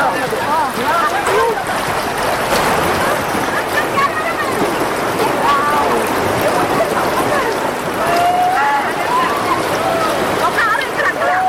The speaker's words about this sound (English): And you said you were drowning, I just typed in heavy water river, yeah. And this is what I got.